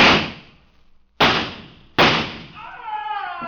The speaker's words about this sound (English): I raised myself on my elbow and fired back.